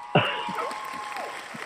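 An audience breaks into applause, a dense wash of clapping that starts abruptly and carries on steadily, with a few voices and shouts mixed in among the crowd.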